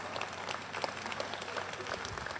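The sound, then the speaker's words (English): A light, polite golf clap from a small group, a soft steady patter of scattered claps lasting a couple of seconds with no voices over it. “We finished that conversation and, yeah, golf clap.”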